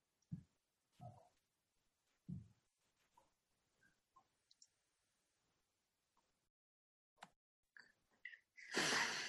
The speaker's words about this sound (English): Rizzo's sniffing the smoke coming out of the chimney.